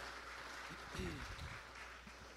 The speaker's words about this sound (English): Yes, clap it up for her. Absolutely.